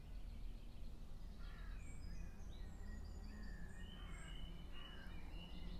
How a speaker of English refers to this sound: The bird song is just amazing. Yeah, it is, yeah.